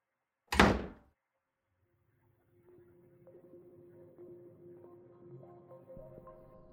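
A door closes with one loud thud that dies away quickly. After a short silence, a low, steady tonal drone with faint melodic notes fades in and continues.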